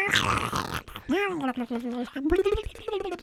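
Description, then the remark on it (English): A voice imitates a dial-up modem connecting: a burst of harsh static hiss, then warbling, sliding tones and choppy screeches, loud and continuous for about three seconds. “You know, the early internet was an ASMR experience.”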